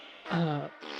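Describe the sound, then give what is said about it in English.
A short, buzzy fart sound, one low raspy blast lasting about half a second, framed by a soft hiss of noise before and after. No one speaks. “Guys, I don't know about you, but the sounds of these farts are starting to encourage me a bit.”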